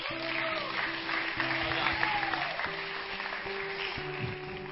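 An audience claps steadily for the full few seconds, a dense, even wash of hand claps with no pauses, while low sustained musical tones hum underneath.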